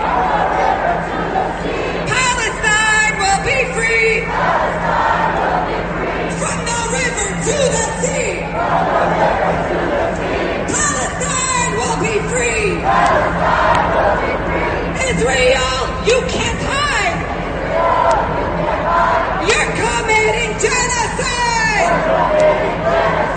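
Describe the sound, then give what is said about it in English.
Hundreds of pro-Palestinian demonstrators around Rockefeller Center chant the slogan "From the river to the sea" in unison, the loud phrase repeating every four to five seconds over a steady roar of crowd noise and shouting. “There were hundreds of pro-Palestinian, pro-Hamas demonstrators.”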